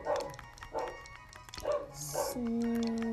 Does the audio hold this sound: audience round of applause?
no